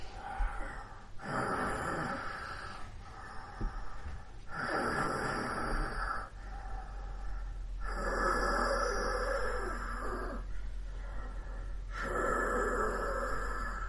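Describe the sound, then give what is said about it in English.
Heavy, rasping breaths of a large cat-like predator watching a camp, loud, repeating in a slow steady rhythm of about five or six long inhales and exhales over a low constant rumble. “We can hear the breathing of some large cat-like predator.”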